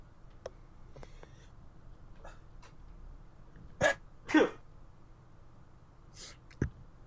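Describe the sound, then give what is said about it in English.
A person sneezes in a quick, sharp double burst, followed a moment later by two smaller sniffling bursts, with no talking. “Hold up, I need to sneeze.”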